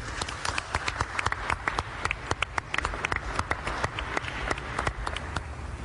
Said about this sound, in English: Today, New York State has the lowest positivity of any state in the United States of America. Let's give New Yorkers a round of applause.